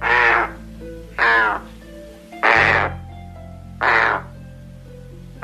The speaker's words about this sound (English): Part of the razorbill's scientific name comes from the Icelandic word for this bird, alka, which is thought to sound like the call of the razorbill, like this.